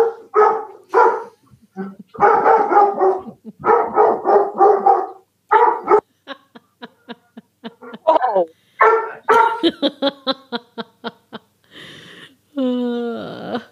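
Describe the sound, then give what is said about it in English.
A dog walking past a house barks repeatedly in clustered bursts, then lets out a quick series of sharp yips before ending with a rising, drawn-out whine. No one is talking. “A dog clearly just walked past my house.”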